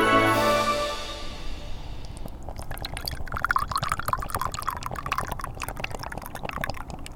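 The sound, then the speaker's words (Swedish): Liquid pours steadily into a glass for a toast, outdoors by a lake on a cold, sunny day, a rising fill tone with splashy, fizzing bubbles and small drips, ending in a crackle of settling foam. “Skål! Skål! En liten julfrulle.”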